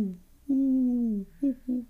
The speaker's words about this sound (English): The other thing we also have is mourning doves, M-O-U-R-N-I-N-G, mourning doves. The reason they're called mourning doves is because they make a crying noise.